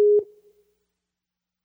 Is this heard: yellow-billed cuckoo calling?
no